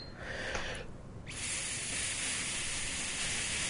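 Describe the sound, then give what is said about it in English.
Someone blows into a breathalyzer to test for alcohol: a short breathy puff, a brief pause, then a long, steady, forceful rush of airy hiss that holds evenly to the end, done in one breath, giving a reading of 0.09. “Is he going to have enough breath to last until the thing is done?”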